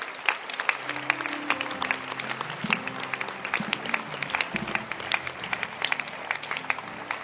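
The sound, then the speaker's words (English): An audience claps their hands for Jesus, steadily and continuously, a dense crackle of overlapping claps, with low sustained tones humming quietly underneath. “Clap your hands for Jesus. Put that. And keep clapping your hands.”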